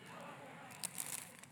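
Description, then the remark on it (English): Doritos chips being crunched up to add into a recipe: a quick cluster of short, dry, crackly crunches in the second half, following a quieter stretch of faint rustling. “I'm going to crunch them up. I love that sound.”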